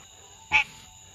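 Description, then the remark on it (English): A single short, raspy frog croak stands out clearly against a quiet background with a faint steady hum; no one speaks. “How come every time you fart, the frog starts making noises?”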